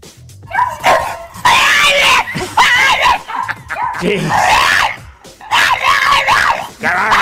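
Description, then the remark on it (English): A French bulldog whines and howls in a string of loud, wavering, drawn-out cries, broken by brief pauses, with no other sounds around it, because it wants to play with the neighbor's dog and is not getting its way. “This is where the French bulldog wanted to play with the neighbor dog, and he wasn't getting his way.”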